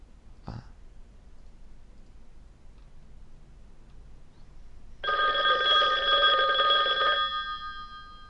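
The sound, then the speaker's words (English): A classic telephone ringtone rings in one sustained burst of about two seconds, a bright, buzzy metallic trill with strong harmonics, preceded by a brief click. No one speaks. “Is there a regular ringtone? Ringtone classic.”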